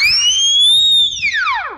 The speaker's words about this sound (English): Then we'll all come out when I blow this whistle.